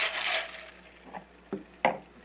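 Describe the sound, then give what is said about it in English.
A cocktail shaker being shaken hard to mix a Vincenza Limoncello and Tito's vodka cocktail rattles with a burst of dense, bright ice-and-metal clatter that fades, then a few separate sharp clinks follow. No one speaks. “We give it a really, really, really good shake.”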